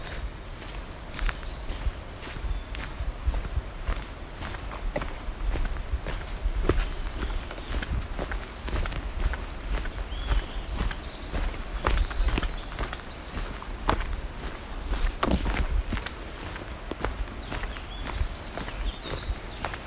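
Steady footsteps of hikers crunch along a trail in the Sierras, each step a sharp scuffing thud in an even walking rhythm over low rumbling background, with no voices.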